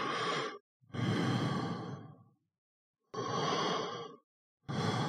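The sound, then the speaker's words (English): A voice imitates heavy breathing: four loud, airy breaths alternating in and out, each lasting about a second or more, with brief silent pauses between them, recreating breathing once heard. “And then I hear what I thought was breathing. And I heard it kind of like it and I'll try to recreate it.”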